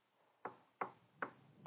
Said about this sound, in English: Oh, the knocking. You found it. Good job.